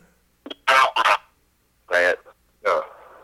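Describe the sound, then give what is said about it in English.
A parrot squawks loudly: a quick pair of harsh, raspy calls, then two more separated by pauses, with no other sounds around them. “All right, Parrot, what do you think of the wrestlers today that you got to see?”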